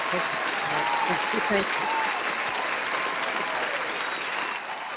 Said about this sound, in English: And I'm going to give you an applause.